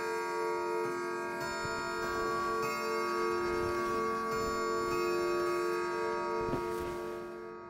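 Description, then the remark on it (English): A clock ticks steadily beneath a sustained, ringing chime striking the quarter hour, its resonant tones hanging in the air for several seconds, moderately loud, with no voices. “The quarter was so long that he was more than once convinced he must have sunk into a doze unconsciously and missed the clock.”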